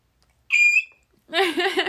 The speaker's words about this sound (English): Maybe I'd be, like, the amazing screech queen. Because I can screech really loud.